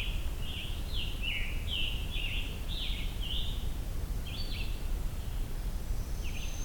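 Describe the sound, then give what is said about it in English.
A red-bellied woodpecker gives a quick series of short, rolling chirping calls, fairly close, then pauses briefly and calls again a few more times over a steady low outdoor rumble. “I'm definitely hearing red-bellied woodpecker nearby.”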